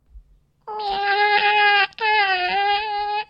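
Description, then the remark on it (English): An adult woman imitates a cat's meow with two long, whiny, drawn-out wails in quick succession, loud, with no other talking. “And it's the I need help wiping meow.”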